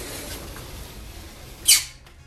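A short, high-pitched squeak from the hinge of a back door as it swings open, in the penthouse of an old pink Art Deco apartment building in Cape Town; brief, over a quiet background hiss with no talking.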